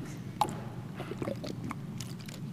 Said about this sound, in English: I'm gonna have to do some work here, so let me take a sip.